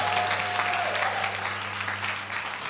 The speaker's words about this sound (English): Give the Lord a clap. Give the Lord a clap. Give the Lord a clap.